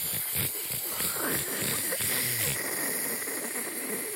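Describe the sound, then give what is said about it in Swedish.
A person imitates white noise with a steady, loud, breathy hiss that holds evenly for about four seconds, bright and airy across the whole range, with faint voiced murmurs underneath early on. “Jag kan göra white noise ganska bra.”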